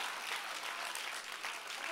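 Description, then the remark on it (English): A crowd claps steadily, a dense wash of many hands with no pauses, loud and sustained from start to finish. “I wish you would clap like you know the victory belongs to you through the power of the Son of Man.”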